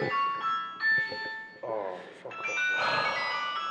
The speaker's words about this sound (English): What did the pact say about having your phone on silent the whole time?